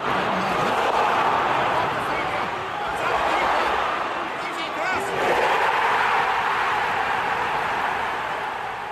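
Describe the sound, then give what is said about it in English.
A large football crowd of about 40,000 at Elland Road roars continuously and loudly, recorded from the stands during the 2021-22 Premier League season, with two surges where thousands of voices shout "go on" together above the steady din. “This audio was captured from the stands, and it captures one of the most vivid, brilliant examples of a crowd shouting, go on.”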